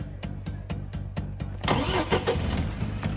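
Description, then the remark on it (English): A car engine cranks over with a quick, steady chugging from the starter, then catches and roars to life, revving loudly with no one speaking. “I get in my car and hightail it down to the Los Angeles courthouse”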